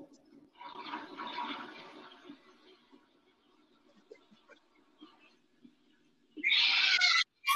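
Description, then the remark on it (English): Rain patters and hisses against a window, swelling briefly and then thinning to faint scattered drips, before a loud surge of rushing water noise breaks in at the end. “Yes, it's raining.”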